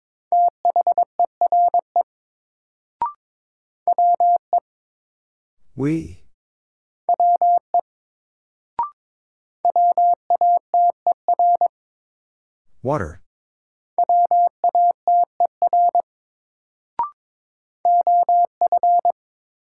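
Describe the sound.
Morse code word drill at 22 words per minute using the top 100 words: quick runs of steady, mid-pitched beeps in dots and dashes, broken by pauses where a voice speaks single words, with faint clicks between groups.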